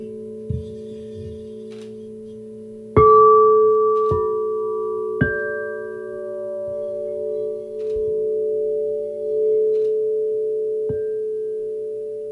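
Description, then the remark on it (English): Sustained resonant tones from a sound bath, with several soft strikes adding new pure, ringing pitches that layer and hum steadily together without anyone talking. “if you spent an hour in a sound bath and play gong,”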